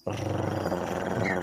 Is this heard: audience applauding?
no